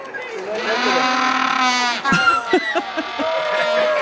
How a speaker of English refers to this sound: I felt like we had to get the actual penguin sounds in there cheering for springtime.